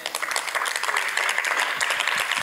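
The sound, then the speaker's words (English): A church audience claps for God during a service, many hands striking in a dense, continuous patter of sharp, bright smacks that stays loud and even throughout. “Come on, give God a better clap of.”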